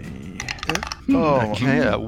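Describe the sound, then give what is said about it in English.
A brief clatter of dice tumbling and tapping on a tabletop, several quick clicks over about a second, followed by a voice talking loudly. “And the next dice roll.”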